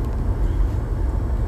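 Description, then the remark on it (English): A steady low rumble of road and engine noise fills the cabin of a car driving home in the dark, a dense continuous drone with no voices. “I am driving home from taking care of some business. Might run an errand or two. I'm in the car.”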